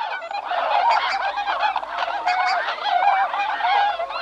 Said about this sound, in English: And I wondered what the sound was since it's called the whistling swan, and this is what it sounds like.